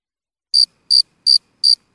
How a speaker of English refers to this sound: And now there's crickets. Now there's crickets.